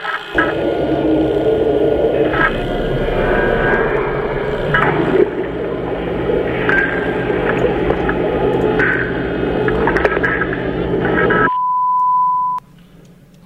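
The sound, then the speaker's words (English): Audio of a video game raid teaser trailer: loud, dense static fills about eleven seconds, muffled and band-limited with faint warbling tones running through it, then cuts off abruptly into a single steady high-pitched beep. “It's like static and stuff.”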